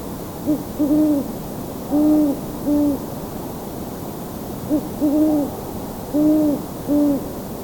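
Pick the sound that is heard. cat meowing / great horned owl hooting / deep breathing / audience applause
great horned owl hooting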